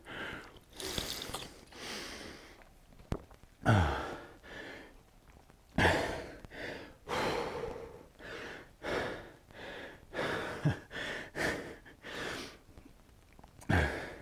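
Heavy, ragged breathing after eating spicy food, with repeated sharp gasps and noisy exhales in an uneven rhythm, loud and unaccompanied by speech.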